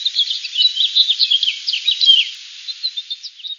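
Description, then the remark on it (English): Dense, continuous chirping and twittering from many small birds in an aviary inside a gallery, quick high-pitched calls overlapping in a busy, steady chorus with no voices. “After several moments of observation in the aviary, it's amusing to note how some of the birds aggressively tear apart pages of the New Yorker”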